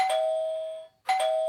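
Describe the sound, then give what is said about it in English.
An electronic doorbell at a front door, rung by a girl, chimes twice in quick succession, each tone bright and ringing before fading, heard clearly and alone with no voices. “She rings the doorbell.”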